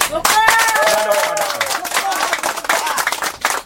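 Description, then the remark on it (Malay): An audience claps steadily throughout, a dense patter of many hands, while a few voices call out or cheer briefly at the start. “Tepukan kepada.”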